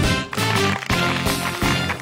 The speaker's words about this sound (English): Fake applause in there